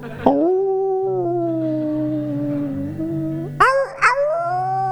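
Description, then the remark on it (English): A voice imitates a whale call with a long, drawn-out moaning tone that slides slowly, then breaks into two rising, wavering swoops near the end, over a band playing soft, steady, slightly New Age style music. “Should we have a whale noise?”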